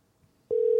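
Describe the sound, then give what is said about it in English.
After a moment of near silence, a telephone ringing tone starts while calling: a loud, steady, mid-pitched electronic tone that holds evenly to the end, with no voices. “Let's call her right now.”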